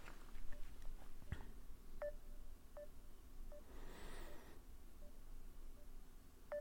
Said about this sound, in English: I'm calling him. I'm actually calling him. It's a weird ringtone, though, huh?